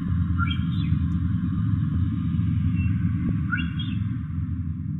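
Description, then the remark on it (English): Orca whistles recorded underwater: two brief, high, rising-and-falling tonal sweeps, one early and one near the end, over a steady low rumbling background with faint clicks. “And finally the whistle of the odontocetes, the orcas, moving around quite a bit in the south.”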